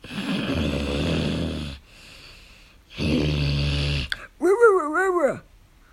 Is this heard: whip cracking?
no